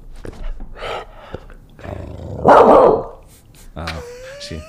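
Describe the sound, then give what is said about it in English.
A female dog lets out one loud, gruff bark that rumbles for nearly a second, with people talking quietly before and after it. “I was trying to make her bark.”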